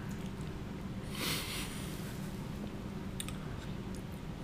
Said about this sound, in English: Two bites in. Yeah, you're going to have to ad lib for us because it's going to be bad radio if I'm just munching on pizza.